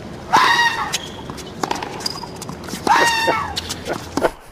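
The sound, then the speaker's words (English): Two loud, harsh squawking clucks, each a short burst that rises and falls in pitch, separated by a couple of seconds with faint taps and clicks in between. “It's a chicken.”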